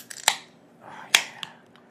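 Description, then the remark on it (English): A 24-ounce beer can being opened: a sharp click, then a brief fizzing hiss rising into a louder pop, followed by a few small tinny clicks, with no talking. “I'm just going to go ahead and open this bad boy up.”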